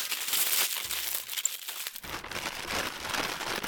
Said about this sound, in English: And then, we wrap it up in paper so you can take it to Floozeville in a brown paper bag, like this.